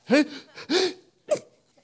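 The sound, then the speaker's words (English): A voice mimics weak, stifled sneezes: three short, breathy bursts with a pitched squeak at the start, the last one briefer, with quiet gaps between. “And then there's those other people that when they sneeze, you're like, that wasn't a sneeze.”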